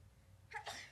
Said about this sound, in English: Bless you.